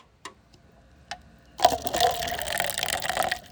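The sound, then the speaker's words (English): After a couple of small clinks, liquid pours steadily into a cup, a bright splashing gush that runs for about two seconds, with no talking. “Now pour it. Let me hear it pour.”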